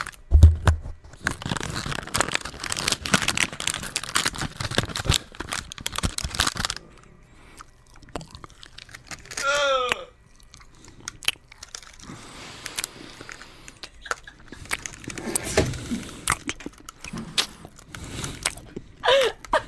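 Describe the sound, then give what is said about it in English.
Crinkling of a snack wrapper mixed with loud, crunchy chewing in an ASMR demonstration, dense bursts of crackle and crunch with a brief quieter pause in the middle, no talking. “Let's hear the chewing again.”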